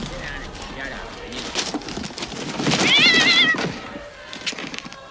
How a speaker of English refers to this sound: This box is meowing. Let me see it.